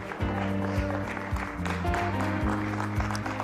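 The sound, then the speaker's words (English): An audience on its feet claps in praise to God, a steady, dense wash of handclaps over loud music with sustained chords and a thumping beat. “Get a lot of great big hand clap of praise.”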